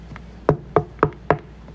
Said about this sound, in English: here comes a knock on the door. Two army officers to tell his wife that he is not coming back.